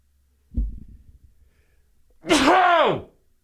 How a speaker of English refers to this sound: Hang on, I got to sneeze.